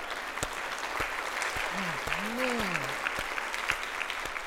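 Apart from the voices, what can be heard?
audience applause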